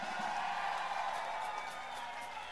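A crowd roars in sustained applause and cheering, a dense steady wash of clapping with scattered whoops and whistles rising above it, no single voice standing out.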